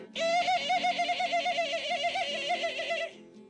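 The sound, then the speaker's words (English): A voice imitates a chimpanzee call: one loud, sustained warbling hoot that wavers rapidly in pitch for about three seconds, with no other sounds around it. “The minor bird says, the chimpanzee says,”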